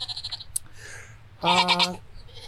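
animal, goats bleating

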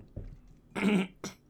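human body sound, throat clearing

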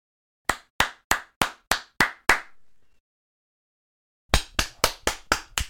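human body sound, hands clapping

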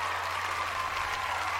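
crowd, applause sound effect

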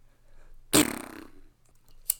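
human body sound, fart

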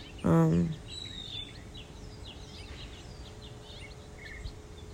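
bird, bird call

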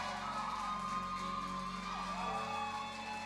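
crowd, audience shouting

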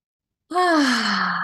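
human body sound, yawning

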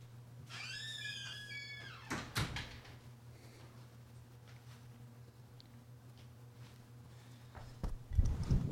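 household object, door being shut

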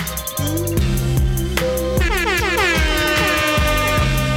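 sound effect, air horn sound effect

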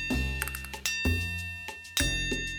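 signal or alarm, school bell ringing

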